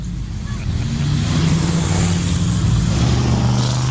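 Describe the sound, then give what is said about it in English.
A loud stock car engine roars steadily, its low rumbling drone building and holding as the car revs past among race cars rolling through, with no talking over it. “Porsche! Stock car.”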